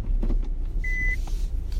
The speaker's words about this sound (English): Excuse my beep, you guys. I'm backing into my parking space.